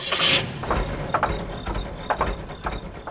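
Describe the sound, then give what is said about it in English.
A car engine turns over with a short, bright burst, then settles into a steady low idle with irregular mechanical puffs and clatter, with no voices. “But a car's engine is also an example of how we've controlled fire.”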